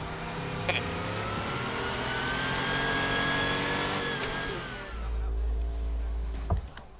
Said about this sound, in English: Oh my god, they even got like the window rolls. That's amazing. They put a lot of thought into this.